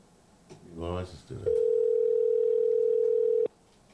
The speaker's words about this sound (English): Right, it's ringing. She may be like me, don't answer the phone. She ain't know the number.